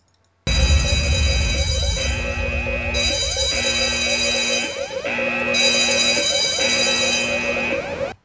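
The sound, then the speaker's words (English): A loud, harsh electronic alarm blares continuously for several seconds, layered with pulsing, cycling tones that repeat in a steady rhythm, with no voices present. “For those who do want to listen to it, be sure to stick around after the giant alarm.”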